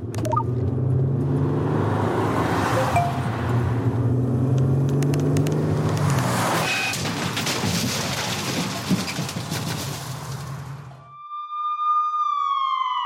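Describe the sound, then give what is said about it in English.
A car drives along the road while its driver takes their eyes off the road to text, with a steady, loud rumble of engine and tire noise for about eleven seconds, then the noise cuts out and a siren begins wailing, rising in pitch. “These are the sounds of someone taking their eyes off the road.”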